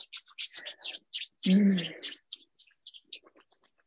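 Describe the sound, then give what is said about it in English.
Palms rub briskly together to build up warmth in a quick run of dry, hissing swishes, steady at first and then slowing and fading, with a short low voiced sound breaking in midway. “We rub our palms.”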